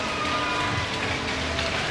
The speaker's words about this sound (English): And an applause. applause for the Vancouver Giants.